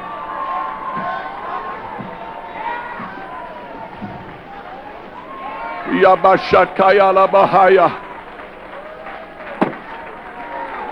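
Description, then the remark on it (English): An audience stomps their feet in a loud, rapid burst of heavy thuds lasting a couple of seconds, set against a noisy crowd of voices and general murmur. “Stomp your feet right now.”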